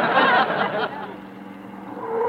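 A car rolls up with a loud, rushing engine that drops off after about a second, settling into a quieter idle as it comes to a stop.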